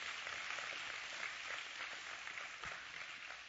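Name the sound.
audience clapping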